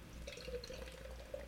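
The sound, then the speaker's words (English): Beer pours steadily into a glass, a continuous gurgling splash with small bubbly fizzing textures, no voices over it. “I'll show you how to pour real beer, son.”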